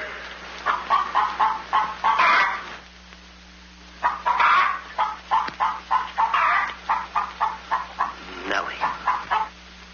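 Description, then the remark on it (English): A hen, ordered to lay a golden egg, clucks loudly and rapidly, as if laying an egg, in quick rhythmic bursts of squawks that pause briefly, then resume in an insistent, excited series of clucks. “Lay, hen, lay.”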